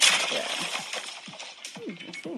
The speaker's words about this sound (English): The crunch sound effect that doesn't appear anywhere else.